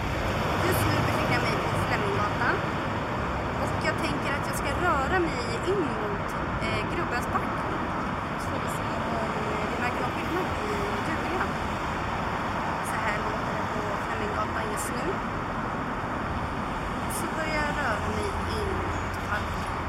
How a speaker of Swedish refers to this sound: Och det är nästan lite svårt att höra vad hon säger i trafikbullret på Fleminggatan. Och jag vill poängtera att vi inte har fuskredigerat den här inspelningen på något sätt i efterhand.